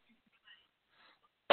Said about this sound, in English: Okay, we've got a little cough there.